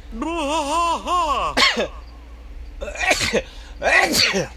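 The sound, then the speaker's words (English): A loud sneeze fit: a drawn-out wavering intake of breath builds up, then a sharp sneeze bursts out, followed by two more forceful sneezes with brief pauses between them. “Hold on, I have to sneeze.”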